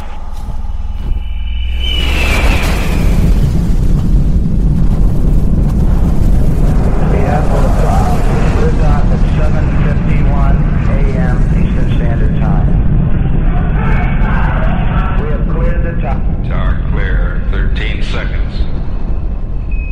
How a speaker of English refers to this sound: Here we have ignition sequence start. The engines are on. 4, 3, 2, 1, 0.